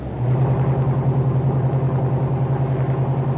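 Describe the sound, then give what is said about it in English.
Police car 91 drives toward the corner of 3rd and Williams, its engine droning steadily, a loud, even low-pitched hum with a slight pulsing rhythm and no voices. “Throw in your clutch and coast up to the other side of the street. There. Cut your motor and lights.”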